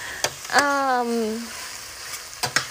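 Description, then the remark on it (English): Onions, bell pepper, mushrooms and green onion sauté in a pan until caramelized, with a steady, even sizzle, broken by a few sharp clicks and scrapes of a utensil and a brief falling, hum-like tone near the start. “So I'm sauteing onions, bell pepper, mushrooms, and some green onion. I'm sauteing that in a pan.”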